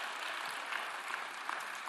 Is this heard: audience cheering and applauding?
yes